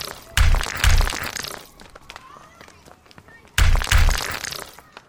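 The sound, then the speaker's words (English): Magnetized rocks, torn from the mountains by giants in Gilead, are knocked together by the giants in two pairs of heavy, cracking strikes a few seconds apart, with lighter scattered clicks and gritty crunches filling the gaps between them. “Why are they putting the rocks together? I've never asked. I think they like the clicking sound it makes.”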